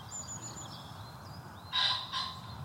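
Waterfowl call twice in quick succession, loud, harsh honking bursts that follow faint thin whistles from other birds, all over a steady low outdoor rumble, in marshy ground by a river swollen by a week of rain.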